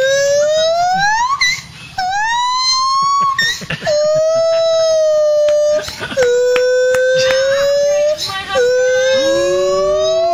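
A male gibbon swinging inside a cage calls in loud, siren-like wails, each note sliding up in pitch and then holding steady, repeated several times with sharp knocks and rattles in between.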